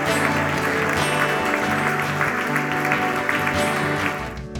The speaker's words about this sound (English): Come on, somebody. Let's clap for joy. Let's clap for joy.